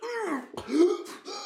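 A person close by hacks out a few harsh, throaty coughs in quick succession, rough and voiced like strained throat-clearing, fairly loud with brief gaps between bursts.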